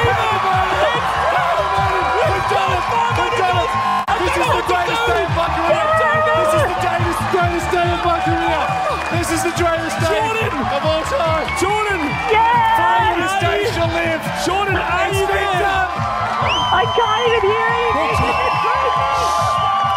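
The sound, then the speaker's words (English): A large crowd cheers loudly and continuously for the whole stretch, a dense roar of many voices with scattered whoops and shouts rising above the steady wall of noise, played as a sound effect. “Crowd down. Turn that off.”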